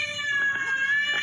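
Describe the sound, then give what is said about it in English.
A female cat lets out a sustained, complaining meow with a strained, wavering pitch, fairly loud, heard on its own without any talking. “Well, this one cat is upset that her owner is home constantly now.”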